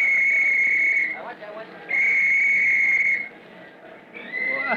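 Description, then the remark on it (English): A loud, shrill whistle blown in three long blasts with short gaps between them, the last one cut off, over a low background murmur, signaling to clear the crowd from the field at a fire. “We're all organized. Soon as I blow my whistle.”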